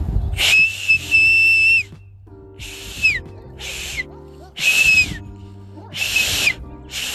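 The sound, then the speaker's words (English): Four loud, breathy whistle blasts separated by short pauses, each a shrill high tone wrapped in a lot of rushing air, with no talking in between. A person whistles to get a neighbor to come to the window because the neighbor's dog is loose. “I'm trying to whistle. I got to get my neighbor to come out to the window.”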